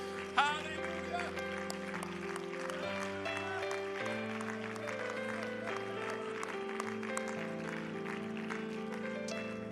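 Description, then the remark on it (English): An audience claps along in a steady rhythm over sustained organ or keyboard chords, with singing voices blending into the music throughout. “Oh, could we clap our hands and lift our voices one more time to heaven?”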